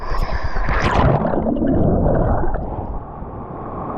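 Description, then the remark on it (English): An ocean wave heard from underwater as a swimmer passes beneath it, in clear water of about 65 degrees with much seaweed: a loud, muffled churning roar with bubbly gurgling that rushes in, holds steady for a few seconds, then eases slightly. “I'll take you through the sensations live, but that's what I really want you to focus on, is when you're swimming underneath the wave, to just really open up your senses and feel everything.”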